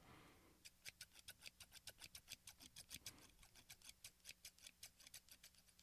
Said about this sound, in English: Oh, this isn't as fun. My scissors are old. I need new scissors.